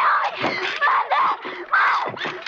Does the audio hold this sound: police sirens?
no